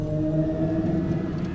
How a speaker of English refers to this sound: The behemoth turned its head and roared again.